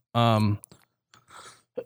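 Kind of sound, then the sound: human body sound, cough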